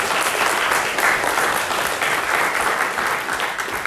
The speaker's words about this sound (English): Let's give the Lord a big round of applause for all that He's done.